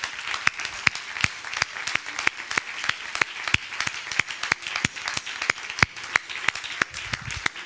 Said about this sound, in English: Amen. Amen. Before you're seated, give Jesus Christ another hand clap of praise.